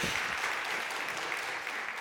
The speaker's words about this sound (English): That is probably the only applause I'll get for singing in my life, so thank you for that.